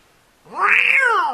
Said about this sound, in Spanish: You shouldn't pull the cat's tail. No debería jalarle la cola al gato.